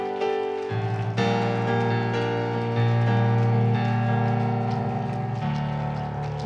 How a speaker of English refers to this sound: Let's give the Lord another hand clap of praise before we're seated.